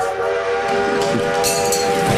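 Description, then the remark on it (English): A train whistle blows one long, loud, steady tone that holds for the whole stretch, with a faint rumble of rail noise underneath and no voices. “The whistles go woo woo.”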